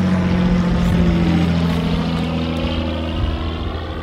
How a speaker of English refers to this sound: Oh, that plane would be good.